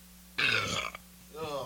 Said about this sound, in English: Excuse my burping.